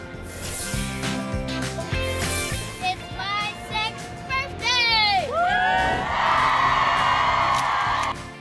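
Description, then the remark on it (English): A big outdoor crowd cheers loudly and continuously on a Tuesday morning, with shrill whoops and high-pitched children's shouts rising and falling over a dense wall of voices, swelling into a sustained roar near the end. “They are fired up. We got a big crowd outside, y'all.”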